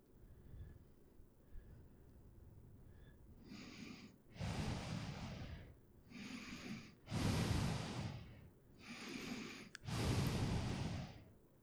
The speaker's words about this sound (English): You breathing heavily? No. I think you are.